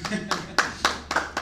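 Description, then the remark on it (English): An audience claps during a Sunday church sermon in a steady, even rhythm, about four sharp claps per second, moderately loud, with a low murmur of voices underneath. “You can clap for that.”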